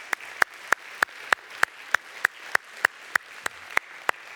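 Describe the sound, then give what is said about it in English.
An audience claps in steady unison, about fourteen sharp, evenly spaced claps over a low hissing murmur of the crowd, with no one speaking, applauding the news that the long-awaited work will start in the new year. “In fact, we're going to see the work starting in the new year, probably, hopefully January, but definitely February, and that deserves another clap, I think.”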